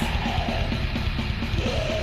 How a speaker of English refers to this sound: The vocals are pretty manic. The more high, there's like it goes between like that low end and this kind of like crazed grindcore scream that happens sometimes too.